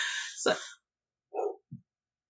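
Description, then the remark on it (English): A dog barks excitedly as someone comes in the door: one sharp, loud bark followed after a pause by two shorter yips, with no talking. “The barking is my dog. He's excited.”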